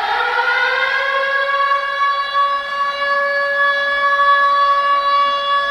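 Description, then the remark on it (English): A loud alarm siren sounds alone in one long sustained tone, rising slightly in pitch at the start and then holding a steady, buzzy, harmonic-rich wail for several seconds. “Ring the alarm.”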